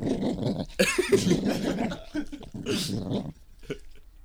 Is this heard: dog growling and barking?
yes